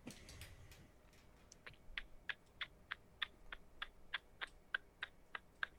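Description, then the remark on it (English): A voice imitates a ticking clock with crisp mouth clicks, a steady, even rhythm of about a dozen fairly loud ticks, following a brief soft noise at the start. “That was a killer clock noise that you just made with your mouth.”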